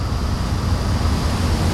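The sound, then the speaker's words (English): Steady, unbroken wash of water and waves around the Larkspur Ferry as it gets ready to depart at 8:29 on a morning, with a low rumbling undertone and airy hiss holding even in loudness throughout; no voices. “on the Larkspur Ferry, getting ready to depart at 8:29.”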